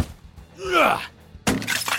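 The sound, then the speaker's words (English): A rising, wavering screech swells up and fades, then a sudden loud crash bursts in with a broad, rattling impact as a spider crashes into a wall. “When that didn't work, it crashed into the wall.”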